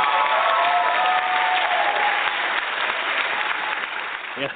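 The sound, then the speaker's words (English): A burst of dense crowd applause, many hands clapping at once in a steady, loud wash that holds for several seconds before tapering off slightly at the end. “You get my applause, kudos on that, man.”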